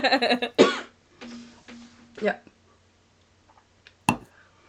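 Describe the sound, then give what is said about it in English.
A person coughs and clears their throat several times, with harsh bursts early on, quieter rasping in between, and a final sharp cough near the end. “I can't really talk right now. I'm coughing.”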